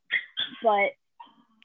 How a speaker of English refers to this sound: I have a puppy. They're fighting right now. Are they fighting? Yeah. Yeah.